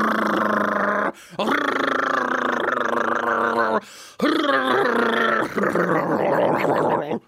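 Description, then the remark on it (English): A voice imitates a motorcycle engine with loud, buzzy, growling revs in three sustained bursts, the pitch rising and dipping like a throttle, broken by short pauses. “I am better than a real motorcycle.”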